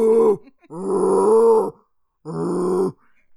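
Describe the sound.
A man imitates a bear with three deep, throaty growls, inhaling and voicing from the chest like metal vocals: a short one followed by two longer drawn-out ones with rough chesty rumble, separated by brief pauses.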